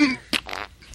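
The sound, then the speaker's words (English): A quick fart sound effect: a low, buzzy blat that slides downward, then a couple of short sputtering bursts, fairly loud with no one talking. “I'm gonna put fart sound effects onto that clip and put it on YouTube.”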